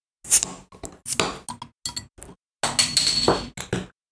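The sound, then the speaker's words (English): Beer glasses clink together in a toast, a cluster of bright, ringing taps, followed by a longer rattle of glass on glass before it fades. “But looking forward to trying it. Cheers. Cheers.”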